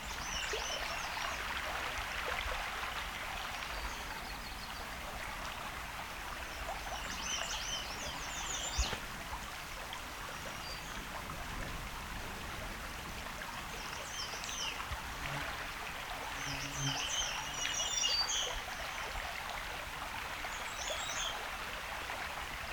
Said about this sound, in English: Sounds like we got black and white warbler here.